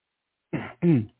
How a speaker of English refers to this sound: I had to cough there.